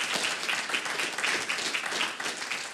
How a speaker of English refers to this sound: And so I know it's Pastor Appreciation Day, and we're grateful for that. But can we just give a round of applause for the church one time? Because I just thank God for this church. Amen.